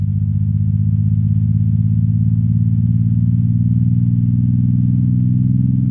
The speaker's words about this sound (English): They're the ripples in space-time made by the tremendous mass of these black holes. MIT professor Scott Hughes converted the gravitational waves into sound. Rising pitch means the force of gravity is getting stronger.